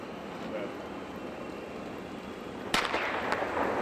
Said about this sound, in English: When the official's gun went off, Helen shot from the mark like a kid's bottle rocket, leaving behind nothing but the awed expressions of onlookers and strained and smoky configurations of her would-be contenders.